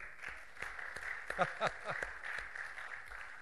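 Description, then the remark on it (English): An audience indoors at Family of God Fellowship claps for itself for bringing in food, for a few seconds, the scattered, uneven claps steady at moderate loudness, with a few voices briefly calling out in the middle. “Give yourself a hand.”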